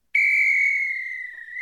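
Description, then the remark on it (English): A single sustained referee's whistle blast, loud, blown to start a game, holding a steady high pitch for about a second and a half before cutting off, with no talking. “So here is my start to a game whistle.”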